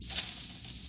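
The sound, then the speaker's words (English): A steady, airy hiss of an aerosol can of spray-on hair, moderately loud, lasting about a second with a slightly stronger burst near the start, and no voices. “My hair comes out of a spray can.”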